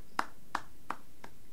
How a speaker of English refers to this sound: I am applauding myself.